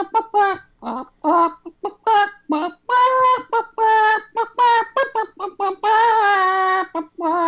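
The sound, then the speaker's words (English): A person imitates a chicken with a rapid series of loud clucks and squawks, rising into a longer drawn-out bawk near the end, with no other talking. “That actually sounded more like a chicken than any chicken that you've done ever, at least that I've heard, so...”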